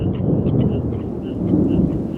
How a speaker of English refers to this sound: Come, quick, get out of the rain. Get out of the rain.